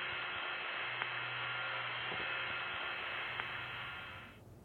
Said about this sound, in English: He ran back to the living room phone, but all he heard on the other end was static.